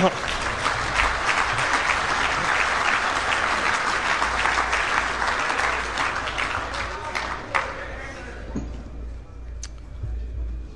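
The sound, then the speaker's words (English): Sustained applause from an audience for the governing committee for keeping a secret, a dense wash of many hands clapping at steady volume for about seven seconds before tapering off into a few scattered claps. “So I think they all deserve a round of applause for managing to keep the secret from Randy.”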